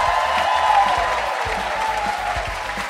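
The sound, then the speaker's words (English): A live audience in Los Angeles applauding steadily at an NPR evening show, a dense wash of many hands clapping at an even loudness throughout, with no voices rising above it. “And of course, thank you, Los Angeles, and this lovely, lovely crowd here tonight.”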